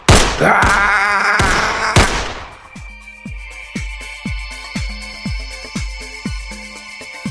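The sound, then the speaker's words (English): A few loud, sharp gunshot bangs ring out in quick succession as a man in his office shoots a couch, then give way to a steady, rhythmic low thumping beat with a sustained tonal hum over it. “He closes the door behind him, takes his gun out, and shoots the couch.”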